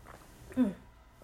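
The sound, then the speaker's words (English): A single short gulp or swallow from a sip of water, a brief low throaty sound in a moment of quiet, with no talking. “Let me take a quick sip of water.”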